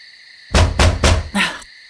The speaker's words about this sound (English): You better not be banging on the walls like that.